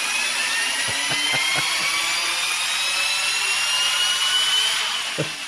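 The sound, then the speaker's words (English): The engine of Ted's modified, ethanol-fueled car revs hard with a loud, steady high-pitched whine whose tones slowly climb, over a broad roar and a few brief low knocks. No one speaks. “Can you roll that beautiful ethanol-charged audio footage real quick?”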